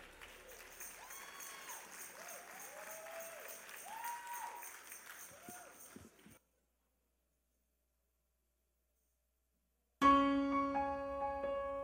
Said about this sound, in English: Everybody. Amen. And while you continue clapping, let's give God praise this morning for ministry and dance by our young adult dance ministry.